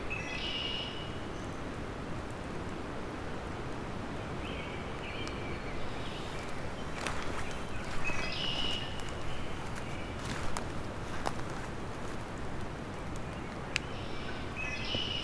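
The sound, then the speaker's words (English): A red-winged blackbird sings several short, buzzy-trilled phrases spaced a few seconds apart over a steady rushing outdoor background with occasional faint clicks. “Red-winged blackbird.”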